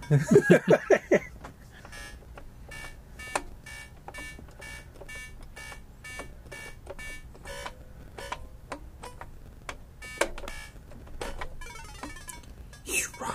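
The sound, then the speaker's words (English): Electronic beeps and bleeps from the original 1981 Donkey Kong tabletop mini cabinet by Coleco (Nintendo's game), a rapid warbling tone at the start followed by steady repeated clicking blips and short tonal chirps, with people talking faintly underneath. “is the original Donkey Kong Coleco mini cabinet from 1981 by Nintendo, by Coleco.”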